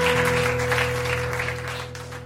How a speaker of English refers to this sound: Let's give God a hand clap this afternoon. Amen.